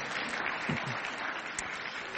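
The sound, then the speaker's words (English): A crowd claps steadily for a couple's 15th wedding anniversary, a dense wash of many hands with no individual claps standing out, sustained at an even level throughout. No one speaks. “You can clap for that.”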